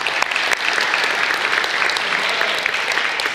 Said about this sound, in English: But I just wanted to give a round of applause to the band. They did a great job.